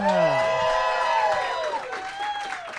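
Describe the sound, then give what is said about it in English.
A crowd at the G-Man Tavern in Chicago cheers and whoops loudly during a live show recording, voices overlapping in excited shouts, with a dense wash of clapping underneath that stays strong throughout before easing slightly. “And those applause right there, we are live at the G-Man Tavern in Chicago.”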